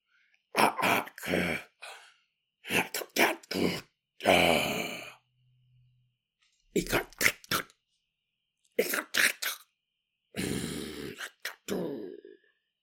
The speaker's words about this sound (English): Monica hears the growling coming from the bedroom